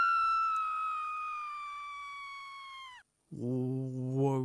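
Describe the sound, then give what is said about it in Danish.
Recorded screams of stressed plants: a loud, high, steady whine that slowly sinks in pitch for about three seconds, a short silence, then a lower, wavering wail that rises and swells. “Sådan skriger dine stressede planter.”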